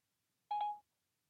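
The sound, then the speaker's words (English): A short electronic chime from a phone as the Siri voice assistant is activated by holding down a button: two quick tonal notes blending into a bright beep that lasts about a third of a second, with silence before and after. “Well, the first thing that happens is in 2014, I'll hold down this button, and then I'll be like, Siri, set my alarm for 5 a.m., and then it will be like, I will have started talking too early.”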